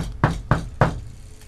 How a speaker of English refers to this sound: We got knock on something.